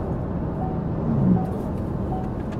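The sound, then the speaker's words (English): A faint, evenly spaced dashboard alert chime repeats about three times inside a car moving on a highway, half buried under the steady low engine and road rumble. No one speaks. “The car was giving us a message.”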